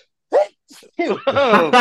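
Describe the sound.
A short, sharp sneeze-like burst, then a quieter breathy sound and a longer, drawn-out voiced exclamation, as if someone is performing an exaggerated old-school sneeze.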